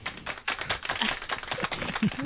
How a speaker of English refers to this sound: He doesn't know that's actually applauding too, right? Welcome, ladies.